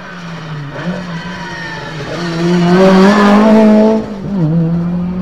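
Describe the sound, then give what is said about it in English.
A Ford Escort rally car's engine howls as it races past, pitch climbing through gear changes, growing louder then briefly dipping before revving hard again, no voices over it. “Back on the action again. Another VDA Escort. RS200, yes.”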